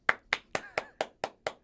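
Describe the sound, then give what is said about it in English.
A quick, steady church clap: about eight crisp, sharp hand claps in an even rhythm, each one bright and snappy, with no voices over them. “It's worthy of a church clap.”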